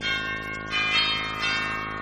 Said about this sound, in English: I walked up to the cottage, rang the bell.